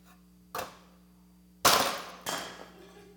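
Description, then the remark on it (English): Three sharp hammer blows strike a clay pot, loud, the second hardest and trailing into a brief crumbling rattle; no one speaks. “And then I started to realize what happens when a hammer comes and intersects with the clay pot.”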